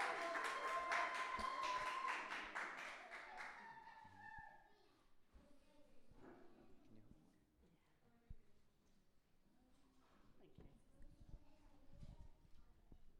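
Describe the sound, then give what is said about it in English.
A burst of audience applause for the evening's first reader, a woman, fills the first few seconds, dense and fairly loud, then fades into the quieter rustle and murmur of people settling down. “Give her a round of applause to encourage.”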